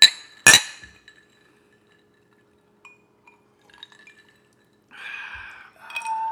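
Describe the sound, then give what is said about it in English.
Two bright glass clinks ring out at the start, followed by faint, scattered taps and small clinks, then a soft pouring or sipping sound near the end. “So, cheers, everybody.”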